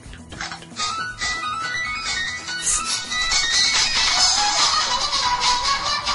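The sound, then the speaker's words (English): A phone ringtone made of dog sounds, played on the radio station N1 FM 102.5, with yelps and whimpering whines layered over a busy, tonal backing that grows louder after the first few seconds. Nobody speaks. “Would you like to hear my ringtone Please.”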